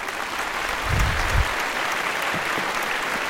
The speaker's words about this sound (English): It's a really well-trained crowd. All right, stop. Well-trained crowd. Yeah, it's like, all right, applause. Stop. Applause, stop. You're having way too much fun with these sound effects today.